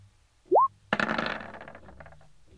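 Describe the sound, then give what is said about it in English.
Dice rolled for a history check clatter and roll across a hard table in a loud burst of rattling clicks that gradually settles and fades, preceded by a short rising tonal blip. “I saw the 4 and the 19 on the dice, and I'm like, okay, this is either going to be real low or real high.”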